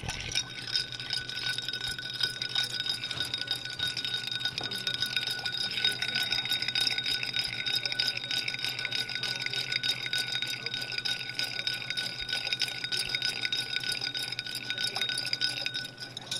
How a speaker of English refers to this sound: And with a Manhattan, I think it's kind of a crime. You want that Manhattan to be velvety smooth, so we're just going to give it a gentle, long stir.